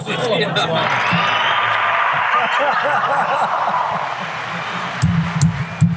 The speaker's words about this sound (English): She pressed the yellow one. It's the applause of the Academy Awards.